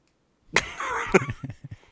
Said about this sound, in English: Sorry, we're going to have meowing on the podcast.